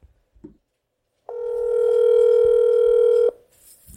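A telephone ringing tone on the line: one steady, loud electronic ring lasting about two seconds, with a few faint clicks before it and a brief burst of noise after. No one speaks.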